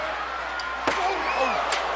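A steel chair slams hard into a wrestler with a sharp crack, and a second, lighter hit follows a moment later over steady crowd noise and scattered voices, during a Hell in a Cell wrestling match fought on the steel roof of the cell.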